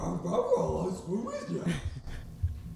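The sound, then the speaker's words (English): A person does a Scooby-Doo cartoon dog voice impression, a garbled, growly run of speech-like yelps and wavering tones for about two seconds before trailing off into quiet. “Now you do the dog.”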